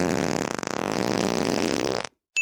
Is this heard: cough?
no